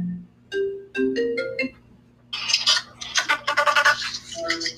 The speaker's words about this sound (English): We are going to take a pause for the calls here for a second because people are so rude. And I know I put this phone on vibrate.